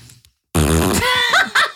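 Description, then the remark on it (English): A loud fart rips out after a short quiet pause, a buzzy, drawn-out blast lasting over a second that wobbles in pitch and ends with a brief final burst. “That was, I thought you're so much wiser than I am. And then I fart.”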